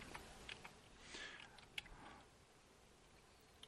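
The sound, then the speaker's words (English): Faint, irregular clicking of keys on a computer keyboard, a scattering of soft taps over a low background hiss. “she's typing in the background, guys.”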